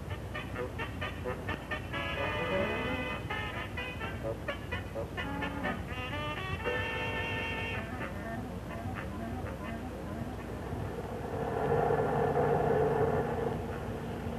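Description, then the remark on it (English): A steady low engine rumble of a bus during a ride runs throughout, with murmuring voices and a brief louder tonal swell near the end. “We've been on this bus more than an hour.”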